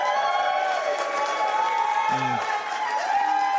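A crowd cheers loudly and steadily for the whole few seconds, a dense roar of shouting voices mixed with clapping that never lets up.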